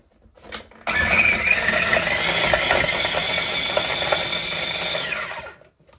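A kitchen appliance roars, pulsed to chop oranges in one loud, steady motor burst lasting about four seconds before winding down, with no voices.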